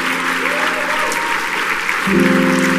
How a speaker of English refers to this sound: If you love Pastor Justin Gleason, please clap your hands, give him honor tonight.